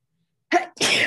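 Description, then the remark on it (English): A single loud sneeze: a short sharp intake burst followed by a brief gap and then a forceful, breathy expulsion, with no talking. “Bless you.”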